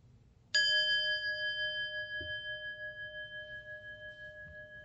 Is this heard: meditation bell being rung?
yes